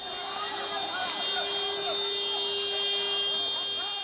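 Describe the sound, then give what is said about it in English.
Wailing emergency sirens rise and fall over a steady high-pitched whine amid strikes in the Gaza Strip, with indistinct voices and commotion mixed in, loud and continuous for the whole few seconds. “It's not just the noise of the sirens and the strikes.”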